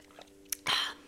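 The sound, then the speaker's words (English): A quiet mouth sound: a small click, then a brief airy slurp as someone takes a sip of water, with no talking. “I gotta take a sip of water.”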